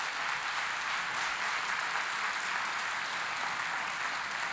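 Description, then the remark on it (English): A crowd claps steadily, a dense wash of many hands applauding at an even, sustained level for several seconds, with no voices heard above it. “If you think that's a good idea, why don't you clap your hands?”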